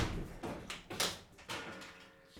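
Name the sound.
door slammed shut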